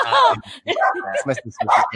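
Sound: puppy barking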